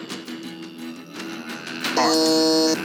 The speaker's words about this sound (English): I heard some that was the throat singing. That one's iconic, I think.